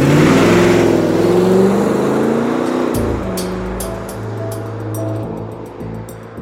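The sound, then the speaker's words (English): A car engine revs loudly, its pitch climbing and then dropping as it shifts into a steady lower drone while the vehicle pulls away. No voices are heard. “They then jump back in the car and drive off.”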